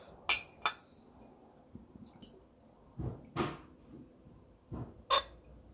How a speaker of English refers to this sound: And right now I'm busily pouring Jenever.